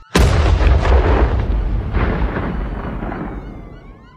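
A single loud explosion of fulminate of mercury in Jack Parsons' garage laboratory in 1952, originating from underneath the floorboards, bursts at once and then rumbles and crackles as debris settles, fading slowly over several seconds with no voices.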